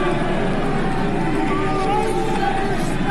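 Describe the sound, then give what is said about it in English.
A large crowd at the Republican convention in Utah booing Mitt Romney off the stage, loudly and steadily, a dense roar of many voices with drawn-out low jeers running through the whole stretch, no single voice standing out. “Getting booed off the stage at the Republican convention in Utah.”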